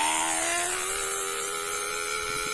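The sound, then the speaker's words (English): A man imitates a train whistle with his mouth, holding one loud, steady, reedy tone that slowly climbs in pitch for a couple of seconds, with no talking over it. “Oh, wow. He does it with his mouth, guys.”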